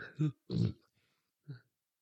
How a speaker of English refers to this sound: So now he's eating chips in your ear, and burped.